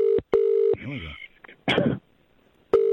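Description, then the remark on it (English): Electronic telephone keypad tones beep in a few separate bursts, some brief and one longer, with a short voice-like sound and a noisy burst in the gap between them. “Right, well, you left a phone number, so you're going to get a call back.”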